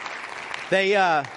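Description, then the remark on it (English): A church audience claps steadily for a moment for a man who will be ordained as pastor, then a loud, sustained voiced call rises over the applause near the end, like a whoop or cheer. “They didn't clap for you in the other two services, but you weren't sitting here.”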